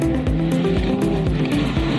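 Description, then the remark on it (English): A rally car roars at speed, its engine revving hard through quick repeated gear changes while tires scrape and skid beneath it, loud and continuous with no voices. “Hudway Glass was inspired by rally racing.”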